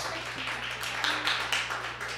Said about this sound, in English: I was like not, I wasn't like trying to get you to clap, I was just really like, yeah